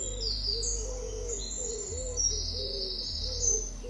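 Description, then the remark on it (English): Birds chirp and trill continuously in a garden in high, bright calls, with softer cooing in the background and a steady low outdoor hum underneath; no one speaks. “There are trees, flowers, a bridge crossing a small lake, the sound of birds.”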